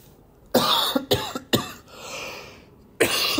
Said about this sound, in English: Oh my Lord, I'm coughing like I'm smoking.